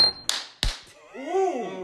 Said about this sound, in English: come over here on the other side of the table and slap that ass. All right. Really taking his time.